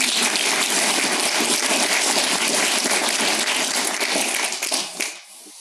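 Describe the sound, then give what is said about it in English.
A round of applause from a group, many hands clapping densely and steadily at a fairly loud level for about five seconds before quickly dying away. No one speaks. “Round of applause”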